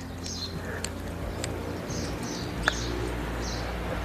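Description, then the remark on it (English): Several small songbirds, blue tits and robins, chirp and trill in overlapping short phrases over a steady low outdoor rumble, at about 9 in the morning in Spain. No one speaks. “There's a nice little chorus of birds here.”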